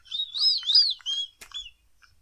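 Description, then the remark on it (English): High, warbling whistling: a quick run of chirpy notes sliding up and down, then a soft click and a couple of shorter whistled notes. No one speaks. “Who's whistling?”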